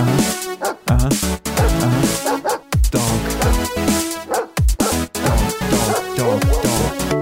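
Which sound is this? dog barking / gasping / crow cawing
dog barking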